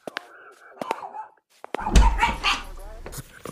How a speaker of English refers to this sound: Good dog, Cooper. Thanks for the alert